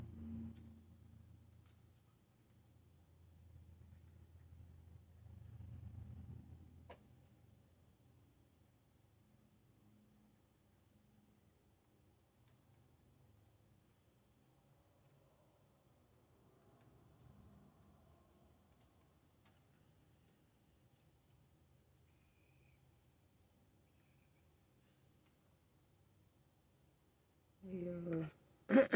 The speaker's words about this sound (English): Oh, it's an ASMR. Crickets. Real crickets.